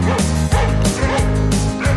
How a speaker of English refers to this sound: This dog is a wild mutt. He is a very wild doggy. He will attack you and give you rabies.